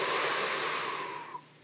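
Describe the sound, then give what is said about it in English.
A long, deep inhalation, a steady airy rush that holds for over a second and then tapers off, with no talking over it; a deep breath drawn into the belly, pushing out its lowest part. “We're going to take a deep breath, and what we're going to try and do is push out the lowest part of our belly, like we're as pregnant as we can be.”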